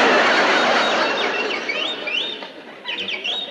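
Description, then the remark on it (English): A molting canary named Yasha chirps and squawks in quick, repeated high-pitched bursts, fairly loud, over a steady hiss of background noise, with no one talking. “That bird again. Shut up, you molting pest.”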